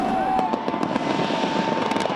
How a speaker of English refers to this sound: As the clock struck midnight in Australia, more than 1 million people watched a 12-minute fireworks display focused on the Sydney Harbour Bridge.